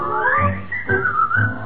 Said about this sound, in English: You will be in style if you pucker up your lips and keep a whistling all the while.